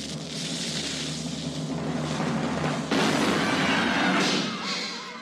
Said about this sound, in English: Fire the cannon.